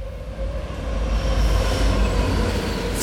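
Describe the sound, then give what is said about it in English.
A train rumbles steadily along the rails, a loud, continuous low roar with a faint tonal whine riding over it and a brief hiss near the end. No one speaks. “But he was on a train carrying a phony Cuban passport.”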